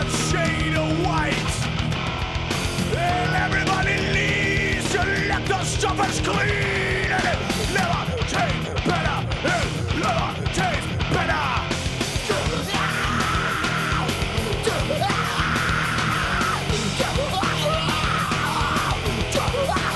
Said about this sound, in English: Yeah, and you can hear why when you're going to hear these screams. And you're also going to hear what I meant by animalistic on this as well.